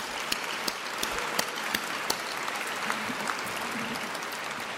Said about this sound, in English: So Bath Spa University, are you up there, Bath Spa? It'll flash through. A round of applause for their extraordinary support.